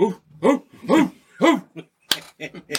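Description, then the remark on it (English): Several people bark like dogs in quick, loud bursts, about two per second, their voices clearly human imitations, followed by a sharp clap-like smack and a few more scattered yelps. “Thought we were in a dog pound for a minute.”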